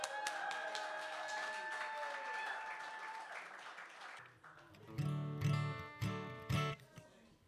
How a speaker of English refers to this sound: Let's give a big round of applause, please